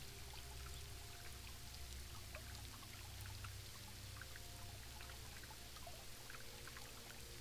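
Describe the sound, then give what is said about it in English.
Steady running water from a spring pours and trickles continuously, with scattered light drips and patter of rain falling on top. Even and fairly quiet throughout, no voices. “The sound of the rain and the water from the spring are peaceful.”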